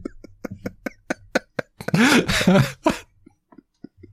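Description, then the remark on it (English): A loud coughing laugh: a quick run of sharp rhythmic bursts builds into a harsh, raspy cough-laugh outburst, then trails off into a few softer huffs. “I'm going to leave that in, including my awful, ugly cough laugh.”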